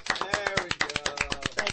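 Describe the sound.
A thin, weak round of applause: a handful of scattered, uneven claps, with a voice faintly audible underneath.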